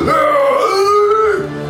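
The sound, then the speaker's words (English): A voice imitates a strangled, gasping roar of a figure whose chest has collapsed inwards as he tries to roar: one loud, strained, throaty groan held for over a second, its pitch sagging then holding steady before it abruptly breaks off. “But you can see his chest like collapsed inwards and he gasps as he tries to let out a roar and goes.”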